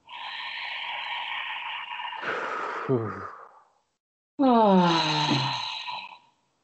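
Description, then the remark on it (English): Two long, deep breaths taken as a breathing practice, each drawn out for a couple of seconds with a brief pause between, partly voiced like a heavy sigh. No one speaks. “How could you love anything more right now than taking this next breath? Practice with me.”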